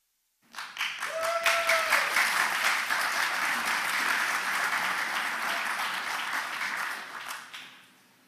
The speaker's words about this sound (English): I wasn't going to get up until you guys started cheering, so appreciate it.